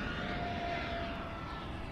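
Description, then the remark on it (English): A steady, broad engine roar from airplanes passing overhead at a beach, filling the whole stretch with a continuous rumble and a faint high whine, loud and sustained with no talking. “And I'm talking loud because I'm trying to talk over these planes.”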